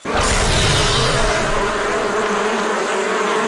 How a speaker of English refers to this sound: Damage over time effect with the sound of bees! That's not the worst.